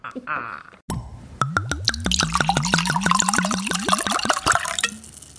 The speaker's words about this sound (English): Pour ourselves a big old glass of wine and we get to drink it. So let's see what we've got in our glass. So we've poured our wine out.